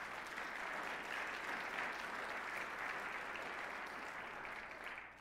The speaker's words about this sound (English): Those of you who are in person, would you welcome our online folks with a round of applause?